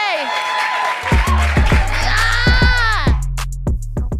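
A crowd claps and cheers, with loud whoops and shouts rising over dense applause, while a steady, thumping low beat starts up about a second in and continues underneath.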